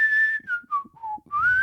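An old man whistles a short, clear tune: a few notes stepping downward, a brief pause, then a rising note. There is no talking.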